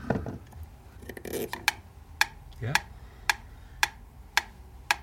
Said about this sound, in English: I think this is my favourite. This is an owl metronome. Let's wind it up, see what happens.